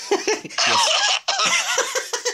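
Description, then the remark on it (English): A loud fit of coughing from a COVID cough, two long rough bursts with short hacking sounds around them, mixed with breathy laugh-like voicing and no words spoken. “A COVID cough there.”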